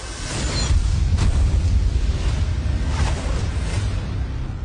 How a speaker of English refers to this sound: I hope you've watched How to Train Your Dragon, because there's one coming for you right now. This guy loves to soar and roar.